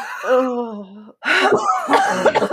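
A strained, wheezing vocal sound gives way to a run of harsh coughing and choking bursts from two people, loud and irregular, with no talking.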